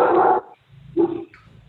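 A female dog barks twice at neighbors she sees, a long loud bark followed by a shorter, quieter one after a brief pause, with faint background noise between them.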